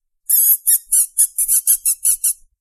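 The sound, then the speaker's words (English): A person's high-pitched, squealing whistle imitating a mouse, made as a call to bring a female animal over; about nine quick squeaky chirps in a rapid, uneven series, fairly loud with no talking. “She does not respond to her name, but will respond to me when I make a high-pitched, whistling, squealing noise when I try to call her over. This is the noise.”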